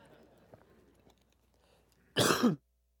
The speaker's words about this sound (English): All right. Sorry about that. He doesn't know when I'm coughing and when I'm not. So you get to enjoy it with me.